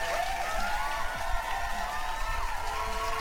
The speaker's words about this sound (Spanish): Un pinche aplauso.